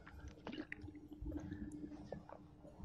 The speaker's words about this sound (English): I've got some water here. I can reach for it if need be. Okay. I'll take one quick sip.